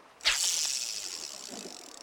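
A fishing rod's reel whizzes as line spins out while someone fishes off the side of a dock: a sudden, bright, high-pitched mechanical whir that starts sharply and then hums on steadily, slowly fading over about two seconds, with no voices.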